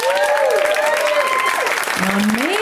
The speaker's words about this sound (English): There's an awesome lineup of comics, and they're back and they can hear you, and let's clap for them.